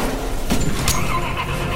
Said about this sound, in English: Another car's coming!